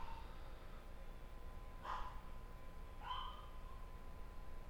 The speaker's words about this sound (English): Our dogs are part of our family, so therefore there's their voices. They wanted to be heard. They said what they needed said, and now it's back to us.